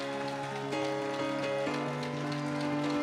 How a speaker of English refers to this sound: Now, I'm a little offended because you gave the same hand clap for the Lord as you gave when I was walking up. Come on, y'all can do better than that for the Lord now.